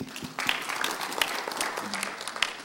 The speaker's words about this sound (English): Boy, praise the Lord. Let's give her applause.